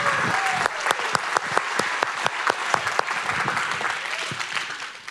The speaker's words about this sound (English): Just take 10 seconds. Clap your hands, 9 o'clock. Come on.